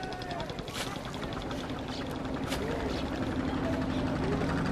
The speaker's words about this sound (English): You can hear all the boats out on the river ferrying tourists.